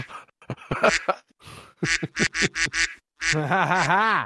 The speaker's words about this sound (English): Having that soundboard there, the whole fucking podcast is gonna fuck me up. Yeah. I'm just gonna wanna quack all the time, just randomly.